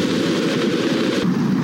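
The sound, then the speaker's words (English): A continuous, heavy rocket roar from a space shuttle launch after main engine start, heard in the first seconds of MTV's broadcast: a dense low rumble with broad crackling noise, steady and loud throughout with a slight shift in tone near the end. “We have gone for redundant set sequencer start, then counting. 5, 4. We've gone for main engine start.”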